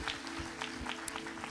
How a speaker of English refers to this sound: Can we give him another hand clap of praise? Praise the Lord.